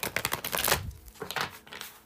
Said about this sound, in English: I will be shuffling the tried and true Tarot Mucha.